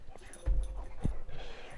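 Dogs whimper and let out short yips as they play in front of people, with a couple of dull thumps and scuffling in between, all fairly quiet.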